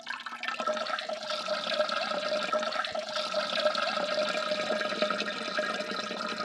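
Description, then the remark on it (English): A steady stream of running water hisses and gurgles continuously, a bidet spray with a faint tonal hum under it, at a moderate even level with no voices. “I was using a bidet.”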